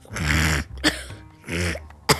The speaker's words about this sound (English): That was a fake cough. That's so fake.